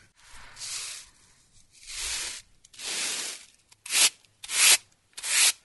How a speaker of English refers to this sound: Now I have finished grinding the corn, and it is soft enough for the cake. So now I'm sweeping it into my basket.